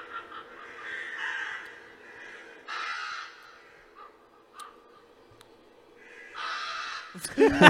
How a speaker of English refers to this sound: Them crows, dog.